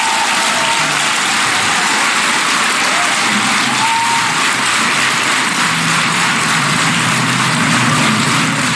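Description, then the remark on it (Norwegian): Long, sustained audience applause with chairs scraping and some interval music during it, a dense, steady wash of clapping that holds at an even, loud level for the whole stretch without pause, with a faint low rumble underneath. “Den applausen den varer så lenge at jeg tror ikke vi orker å høre på den.”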